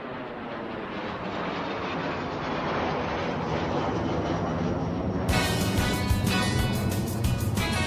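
A steady, loud jet engine roar fills the whole stretch, a dense rushing drone that grows brighter and more whining partway through, with no voices.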